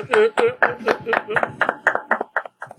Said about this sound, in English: Let's give ourselves a round of applause.